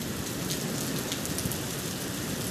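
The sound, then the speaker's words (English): Heavy rain pours down in a steady, dense hiss of countless drops during a thunderstorm with lightning, loud and unbroken throughout, with no voices and no distinct thunderclap. “I love this weather. I just wanted you guys to hear it.”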